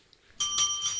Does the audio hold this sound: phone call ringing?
no